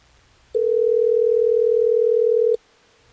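A steady, loud telephone tone holds for about two seconds as the radio station Hot 101.5 calls a listener, framed by faint clicks at its start and end, then drops away to near silence. No one speaks.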